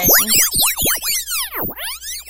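A blaring cell phone alarm: loud, rapidly repeating electronic tones that swoop up and down in pitch, about ten warbling pulses in quick succession with no voices.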